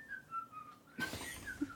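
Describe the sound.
Someone whistles a short melodic tune from a song, the pitch gliding between notes; partway through, a burst of rustling or breathy background noise joins the whistling, which stays clear.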